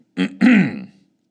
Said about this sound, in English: The PM went a shade of puce and coughed to cover his embarrassment as he turned the piece of paper round and proceeded, after a slight pause and a cough to clear his throat, to read out loud.